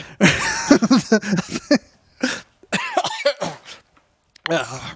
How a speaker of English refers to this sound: I'm okay. We'll edit out the coughing.